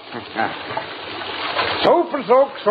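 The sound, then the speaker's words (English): Water runs steadily from a tap as its hot and cold flow is adjusted to the right temperature, a hissing rush for a couple of seconds that carries on faintly as a voice starts talking over it near the end. “The water should be just about... there we are. Just right.”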